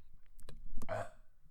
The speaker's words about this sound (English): Excuse me, I think I burped.